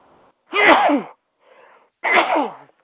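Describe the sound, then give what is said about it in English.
Two loud sneezes about a second and a half apart, each a sharp voiced burst, with a faint intake of breath before and between them. “Excuse me, sorry about that.”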